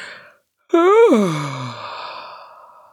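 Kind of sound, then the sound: human body sound, big yawn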